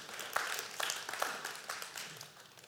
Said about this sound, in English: All right, just give yourselves a round of applause for engaging in that.